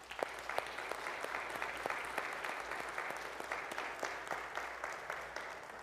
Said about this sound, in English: If you have influenced these kids in any way, would you please stand up for just a second? Will y'all clap for these?